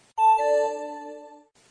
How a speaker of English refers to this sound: You've often heard the little chime